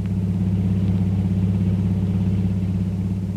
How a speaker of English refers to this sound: An hour or two later, a long, powerful car twists its way through the winding streets of Singapore's waterfront. Kolu is at the wheel, and Jungle Jim is at his side.